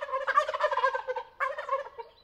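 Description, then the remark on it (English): Wild turkeys gobble at dawn in loud, rapid, rattling bursts, one long call followed by a second after a brief pause, in the open morning air just outside Patagonia, Arizona, as they leave their overnight roost in a tall sycamore tree to find food. “It's dawn, and the wild turkeys who roosted all night in a tall sycamore tree are heading off to find breakfast and making sure everybody knows about it.”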